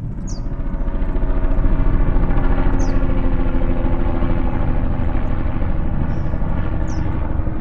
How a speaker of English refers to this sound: They were really initially tasked with understanding overflight noise, so the sound of aircraft flying overhead, be it commercial jets like you would take on vacation, be it military jets or helicopters.